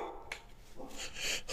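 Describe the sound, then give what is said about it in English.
A dog barks several times in short, uneven bursts at someone walking by, sounding muffled, with no talking over it. “Oh, she's barking at someone walking by.”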